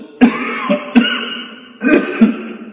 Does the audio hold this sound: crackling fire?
no